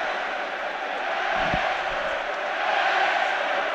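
A huge rugby stadium crowd roars at a Leinster versus Toulouse match, above 98 dBA, as Leinster attack inside the 22. A steady, dense wall of noise, loud and unbroken throughout, with no individual voices standing out.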